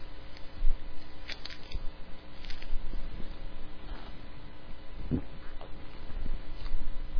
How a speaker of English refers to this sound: That is some refreshing water. Y'all may just think I just said that, but that's some refreshing water, some good water.